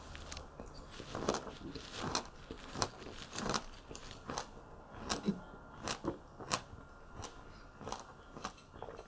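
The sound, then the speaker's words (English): Someone eating chilled pomegranates just pulled from the fridge, with a steady run of crisp, juicy crunches and bites at an uneven chewing rhythm, fairly quiet and with no talking. “Water with pomegranates is good.”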